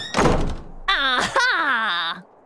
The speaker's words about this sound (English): And at the same time, Laura and Mim were looking for clues. Mim was busting down doors and saying, aha!